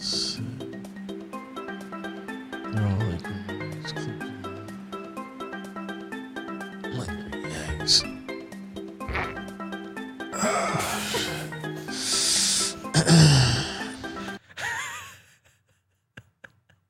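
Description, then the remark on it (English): A wet, spluttering fart in a played video erupts near the end over steady background music, a couple of noisy bursts before the sound cuts to near silence. “Something happened there. It was a wet one.”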